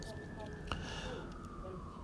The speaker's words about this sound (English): And yes, there's a sirens and shit happening outside.